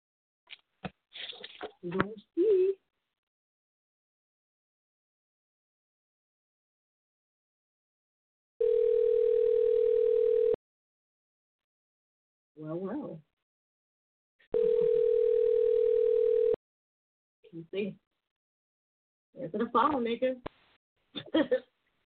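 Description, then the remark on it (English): An outgoing call's ringback tone sounds twice, each steady two-second buzz separated by a pause, with brief bursts of voices before, between and after the rings. “Answer the phone,”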